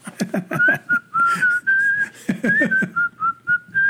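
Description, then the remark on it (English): A person whistles a bright, cheerful melody, the notes sliding and held in a bouncy rhythm, with a low voiced murmur underneath at times. “But I mean, did they whistle like the seven dwarfs?”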